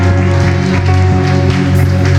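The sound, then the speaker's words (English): An audience claps hands in a steady rhythm during a morning church service, the sharp claps landing over loud, sustained organ-like music with no talking. “I think you ought to clap your hands one more time.”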